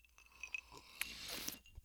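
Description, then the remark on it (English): Ice cubes clinking and rattling in a glass of cold brew coffee as it is swirled around: a few light, high-pitched taps followed by a brief swirl of softer clatter, faint and with no talking. “Clinking my cold brew coffee around in my glass here.”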